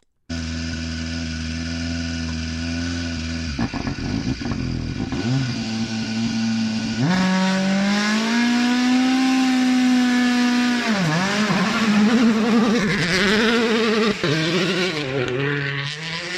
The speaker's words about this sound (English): After 3 months of silence, the glorious echoes of WRC cars testing in the midsummer forests of Finland, a sound we have all missed. It never gets old, does it?